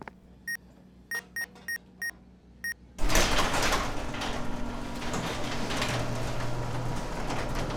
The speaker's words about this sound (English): Well, the door works.